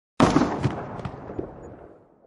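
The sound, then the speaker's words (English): A single loud gunshot from a heavy hand cannon booms out abruptly, then rumbles and crackles away in a long echoing tail over about two seconds. “As I closed my grip, allowing Jaren's cannon, now my own, to have the last loud word.”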